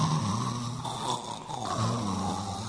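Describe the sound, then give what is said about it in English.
Someone makes a loud snoring noise with their voice, a rough, rumbling drone held for about three seconds with slight swells, with no talking. “His snoring is even bigger than mine.”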